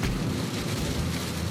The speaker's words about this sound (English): It's raining pretty hard now. Seems like every time I'm traveling this road lately, it's pouring down rain.